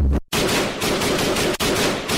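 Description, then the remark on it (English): A loud burst of rapid automatic gunfire, sustained, with a brief gap near the start and another short break partway through, no voices present. “Get yourself shot.”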